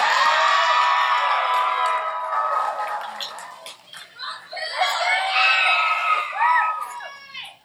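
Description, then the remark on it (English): A crowd erupts in loud cheering and high-pitched screaming as a participant is welcomed up, sustained for several seconds, with excited shrieks and whoops rising again in bursts toward the end. “So we're going to try this again. Everybody, welcome up Paige!”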